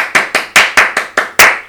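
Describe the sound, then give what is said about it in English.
A short round of applause marking one year of the Jams Only show: about seven sharp, loud hand claps in a steady, even rhythm, each crisp and bright with a quick fade, with no voices. “So, first of all, I'd like to give a round of applause for myself for doing the Jams Only show for so long.”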